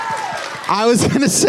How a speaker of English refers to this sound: I was gonna say you can meet me at the doors afterwards, but I'll take that applause. Thank you very much.